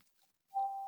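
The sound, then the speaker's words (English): A small bell is struck once after a moment of quiet, during a guided breathing meditation opening a sacred circle, its clear, steady ringing tone holding and fading only slightly. No one speaks. “to come through as a little bell that does.”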